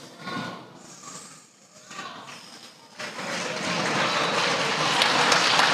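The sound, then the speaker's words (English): Voices are heard briefly, then a burst of dense clapping starts about halfway through and grows steadily louder, continuing without a break until the end. “I don't mean to applaud.”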